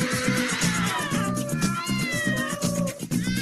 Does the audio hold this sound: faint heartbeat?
no